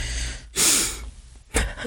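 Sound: sneeze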